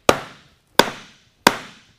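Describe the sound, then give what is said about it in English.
Firewood being split in the rain: three sharp, loud axe strikes at an even pace, each a hard crack with a brief ringing decay, and no talking. “The way I look at pieces of wood that won't split is the way I look at chewing on a piece of grizzly steak.”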